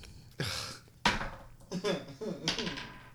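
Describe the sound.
Dice clatter off a table in a few sharp, separate knocks and bounces while people talk over them.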